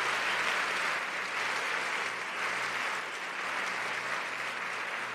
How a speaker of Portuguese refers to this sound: Se você tem vitória e você é alegre para essa vitória, aplauda Jesus onde você está agora. Glória a Deus.